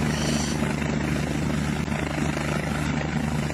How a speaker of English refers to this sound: Oh, helicopter's back again. Coming back in again. Oh, yeah, it's going to show the approach from a different angle.